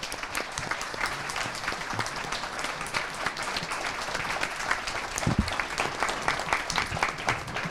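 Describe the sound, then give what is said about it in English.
Steady, dense applause from an audience for all the candidates in a mayoral race, many hands clapping at once in a continuous crackling wash at even loudness for several seconds, with no voices standing out. “Can we have a round of applause for all of our candidates, please?”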